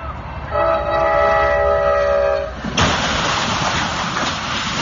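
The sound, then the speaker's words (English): A train horn blares steadily for about two seconds, then a sudden loud crash of impact erupts into a sustained roar of crunching, rumbling noise as the train strikes a truck rig stuck on the tracks. “That's the rig stuck on the tracks.”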